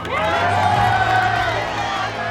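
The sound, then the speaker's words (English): A crowd of caballeros shouts and cheers in praise of Zorro in a dense, sustained roar of overlapping men's voices, loud and steady throughout with no single voice standing out. “The caballeros shouted in praise and followed Zorro out into the courtyard.”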